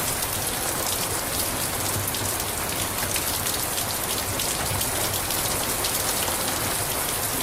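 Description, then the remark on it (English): Steady, heavy rain of a storm pours without pause, a dense hiss of countless drops striking a surface at an even, moderately loud level, with no voices and no thunder. “passively waiting for it to be over kind of way, but a participatory appreciation for the storm itself.”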